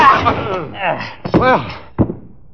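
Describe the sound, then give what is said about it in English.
A chair strikes a man with a couple of sharp, heavy whacks, cutting through strained grunting and shouting voices during a brief scuffle. “You were very handy with that chair.”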